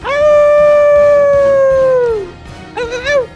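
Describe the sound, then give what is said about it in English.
A voice imitates a wolf howl: one long, loud, steady note that slides downward at the end, followed after a short pause by a briefer, wavering howl. “you're the lone wolf here, brother.”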